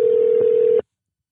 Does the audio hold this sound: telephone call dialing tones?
yes